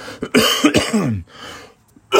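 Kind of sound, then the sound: human body sound, coughing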